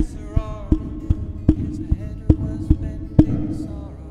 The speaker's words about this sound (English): I must be getting electrical shocks from touching the walls of this metal ductwork. It keeps popping. Do you hear that? Wonder what that is.